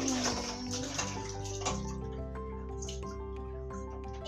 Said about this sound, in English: And when you're brushing your teeth, don't go like this. Because usually you put your toothpaste on and then you run it under the tap and then you just take it out, but you don't turn the water off. That would be wasting the water.